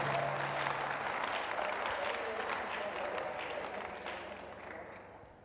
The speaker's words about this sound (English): Give a big clap offering to Jesus.